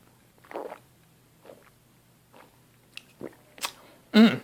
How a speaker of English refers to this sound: Let me take a sip.